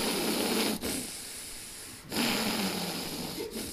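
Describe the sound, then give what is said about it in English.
A person imitates a man's heavy, deliberate breathing while concentrating: loud, rasping inhales and exhales in a slow rhythm, with brief pauses between breaths and no talking. “So it's very very loud breathing, and so and then when he would get distracted, then his breath would go quiet.”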